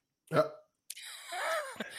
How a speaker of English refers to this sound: I need to sneeze.